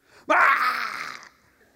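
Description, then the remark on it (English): An adult voice imitates a two-year-old's tantrum scream over a refused candy bar: one sudden, loud, strained shriek that bursts out at full force, holds for about a second, then cuts off into silence. “I mean, it goes from zero to 9,000 in one moment. This is screaming.”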